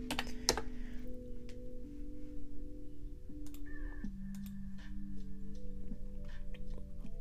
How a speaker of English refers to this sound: Hold tight. We're gonna do some clicking. We're gonna do some clicking. ASMR.